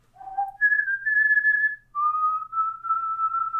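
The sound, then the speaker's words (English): A slow, eerie whistled tune, Chauvin's song, the one he whistles when he casts dissonant whispers, with long sustained notes, the pitch sliding between held tones before dropping lower, clear with no talking. “It's the one he whistles when he casts dissonant whispers.”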